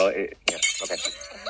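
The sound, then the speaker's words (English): A sudden bright crash like glass shattering, with sharp high-pitched fragments ringing out briefly, fairly loud, mixed with people talking before and after. “It sounded like something broke just now, like a glass shattering.”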